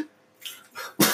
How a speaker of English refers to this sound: Yeah, and you've been coughing and I'm having like fever, shortness of breath. Been coughing a lot at work.